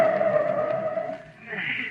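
A car's brakes screech loudly and steadily for a couple of seconds as it stops for a parking space, a high squealing tone that shifts pitch near the end as the car comes to a stop. No voices are heard.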